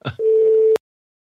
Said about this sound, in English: the person whom you're trying to reach is currently unavailable. Please leave a message after the beep.